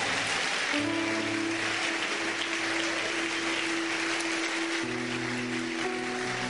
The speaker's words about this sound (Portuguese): Oh, palmas para o Senhor. Oh, clap to the Lord.